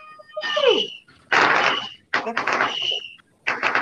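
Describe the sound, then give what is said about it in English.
Fireworks go off outside across the city: a descending whistle, then a series of loud, crackling bursts, roughly four separate booms, each trailing off briefly before the next. “Hey, let's check out the fireworks.”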